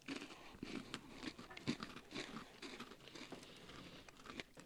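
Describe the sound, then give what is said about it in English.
Crunching of a Buffalo blue cheese flavored baked pretzel snack, a steady run of crisp, brittle bites and chewing cracks repeating over several seconds with no talking. “A lot of crunch. It holds up.”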